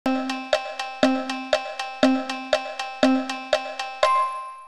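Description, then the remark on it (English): A railroad crossing bell clangs in a steady, rapid rhythm, about four metallic strikes per second with ringing overtones, loud and alone, ending on a final sustained ring. “A railroad crossing.”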